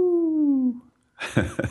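A short, wavering wolf-like howl slides slowly downward in pitch, apparently a human voice imitating it, then breaks off; after a brief pause, noisy voices or rustling follow.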